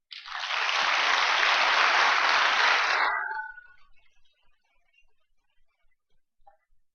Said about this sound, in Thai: ก็ขอเสียงปรบมือไม่มีเขาก็ไม่มีเรา